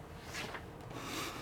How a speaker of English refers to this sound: I mean, just the size of the book I find most awkward. Very heavy. A bit of a workout, really. Just holding it. Yeah, holding it, turning the page. Yeah, it's quite a big page to turn. Don't know if you can hear this.